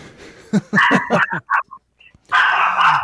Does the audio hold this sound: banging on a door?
no